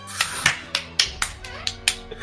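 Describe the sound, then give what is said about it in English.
A person claps their hands about eight times in a loose, slightly uneven rhythm. The sharp claps are fairly loud, with short pauses between them. “I'll applaud that.”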